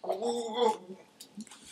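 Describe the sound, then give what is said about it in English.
A wet gurgling burble of beer fizzing in someone's mouth together with a Mountain Dew corn snack, voiced and wobbly for under a second, followed by faint crackly hiss and a small wet click. “Oh, now it's fizzing up like a Pop Rock, dude.”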